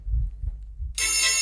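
A low rumbling murmur gives way to a phone alarm that bursts in abruptly, a loud, bright electronic ringtone with a buzzy, harmonic-rich tone that holds steady to the end.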